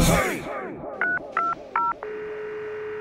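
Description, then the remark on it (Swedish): Three short electronic telephone keypad beeps in quick succession, each a dual-tone chirp, as a person dials to call their mother, followed by a steady buzzing ringback tone; faint background noise fades at the start, no talking. “Ja, jag måste ringa upp min mamma igen.”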